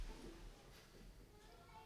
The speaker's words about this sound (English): Editing is going to be a pain in the ass. I'll do the clap.